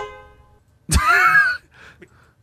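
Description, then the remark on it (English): A voice imitates a gentle car horn with one soft, sustained honk lasting about half a second, followed by faint breathy sounds and a brief murmur. “That's such a calm honk.”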